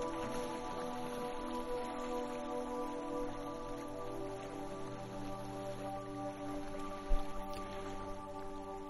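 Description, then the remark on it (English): Steady, gentle water sounds, a soft continuous wash and trickle, sit over a sustained low musical drone, with one brief splash-like knock near the end and no talking. “Feel this sacred water all around you and listen to its messages.”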